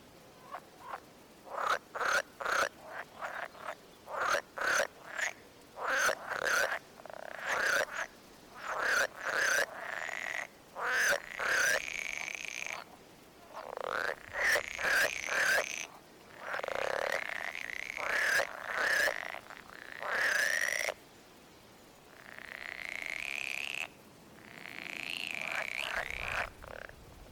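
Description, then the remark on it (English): A pool frog calls repeatedly, a rapid series of loud, rattling croaks in bursts with short pauses, clear with no voices present. “Do pool frogs have a recognizable noise that they make that you can really identify and know that this is definitely a pool frog?”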